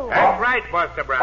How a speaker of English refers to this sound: That's my dog, Tige.